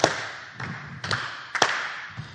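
Hands clap on the upbeat in a loose, steady rhythm, about six sharp claps with a couple landing almost doubled, over a constant background hiss. No one speaks.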